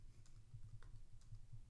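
Quick, irregular clicks of typing on a computer keyboard as character descriptions are typed up, fairly quiet, with a low steady hum underneath and no one speaking.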